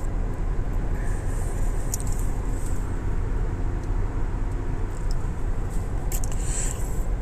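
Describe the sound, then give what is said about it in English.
Steady, dull road rumble fills the cabin of a moving car used as a mobile studio, a constant low drone with faint high hiss and no voices, holding even throughout, at about 3:55 a.m. “Eastern Daylight Time, and I'm coming to you live and loud from the Mobile Car Studio with today's episode.”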